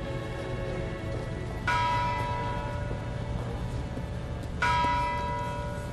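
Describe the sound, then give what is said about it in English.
A very large bell tolls slowly at a drill field, rung for each victim to honor the Norris Hall shootings of April 16th: two resonant strikes about three seconds apart, each ringing out with rich sustained overtones over a steady low background hiss, with no voices. “And at that moment, they began to ring a bell, a very large bell.”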